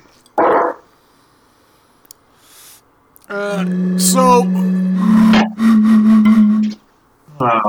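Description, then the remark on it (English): A male dog barks, one sharp, loud bark followed after a pause by a long run of drawn-out, whining, howl-like barking that ends abruptly. “Really doesn't know when to stop barking.”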